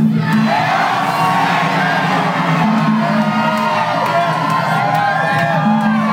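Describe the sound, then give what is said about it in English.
A large crowd shouts "Hail Satan" together on a count of three, a loud, sustained roar of many voices that swells into cheering and whoops and holds steady for several seconds. “On the count of three, can I get a Hail Satan?”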